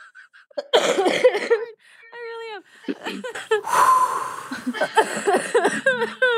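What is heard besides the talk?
coughing fit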